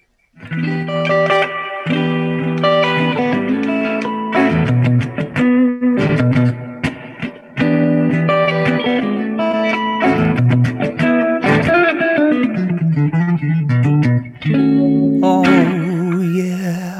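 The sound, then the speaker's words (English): Electric guitar, played through a Bad Cat amplifier, plays bluesy riffs with reverb, mixing sustained notes, quick runs and bent notes that glide in pitch, played alone at a steady, fairly loud level with no talking. “And you got the reverb set just right for a little blues thing.”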